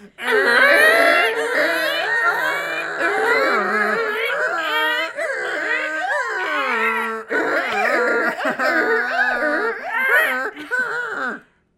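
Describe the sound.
Three people imitate a donkey's bray all at once, overlapping in loud, wavering hee-haw cries that swoop up and down in pitch, with brief breaks for breath, for about eleven seconds.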